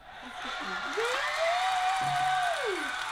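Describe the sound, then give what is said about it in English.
A burst of canned applause and crowd noise played by pressing an applause button, steady and fairly loud for about three seconds, with a rising and falling whistle-like whoop over it. “I've been able to hit this applause button for myself.”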